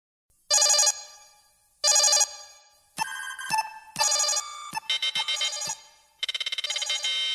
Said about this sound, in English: that alarm signals that we have an incoming threat analysis.